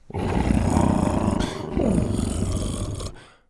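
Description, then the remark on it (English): A large creature named Buck gives a deep, loud rumbling purr as the top of its head is rubbed, continuous for about three seconds with a brief dip in the middle, then fading out. No one speaks. “Dr. Rex rubbed the top of Buck's head, and Buck purred.”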